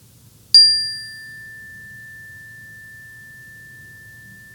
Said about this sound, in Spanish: Comenzaremos esta meditación con el sonido de esta campana.